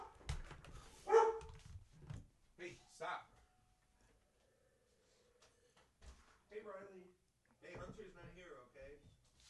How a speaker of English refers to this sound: Here, hold on a sec. My dog is going nuts. Here, just hold on a sec.